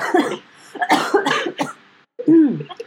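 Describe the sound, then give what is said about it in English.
Several harsh coughs burst out in quick succession, followed by a brief pause and a final raspy, voiced cough with throaty vocal tone. “I'm gonna just cough.”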